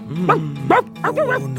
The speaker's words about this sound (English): The next thing you hear is barking.